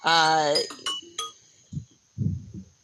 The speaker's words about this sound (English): Oh, that's your timer. Oh, so that was deliberate. That was my timer, yeah,